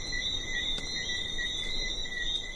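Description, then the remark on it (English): A dense, continuous chorus of small frogs that come out at night on an island: shrill high-pitched calls overlap into a steady trill, with a faint breeze rumbling underneath and no voices. “There's just the sound of the breeze and these little frogs that come out at night and chorus all over the island.”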